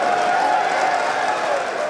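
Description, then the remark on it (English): House Republicans cheer and clap in a dense, steady roar of voices and applause as the vote on an Obamacare repeal bill reaches 216, loud and unbroken for a couple of seconds, with no distinct words. “A huge cheer went up from House Republicans as they got to that magic number, 216.”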